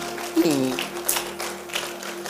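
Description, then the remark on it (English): Scattered applause from an audience clapping in praise of the Lord, a few loose claps rising and fading over a low steady hum, with a brief vocal exclamation near the start. “Give the Lord a clap of praise, someone.”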